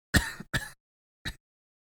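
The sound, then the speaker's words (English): Three harsh, hacking coughs: two rough bursts back to back, then a shorter one after a brief pause, with no talking around them. “I went from coughing to coughing and hacking in under an hour.”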